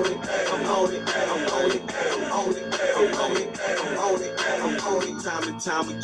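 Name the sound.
hip-hop song playing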